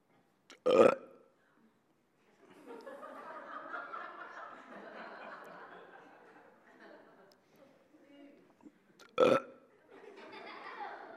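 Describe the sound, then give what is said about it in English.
Two loud, abrupt belches, one near the start and another about eight seconds later, with a stretch of soft chuckling and murmuring laughter filling the gap between them. “It's a belching. It is something that bubbles up from within and finds expression through the mouth.”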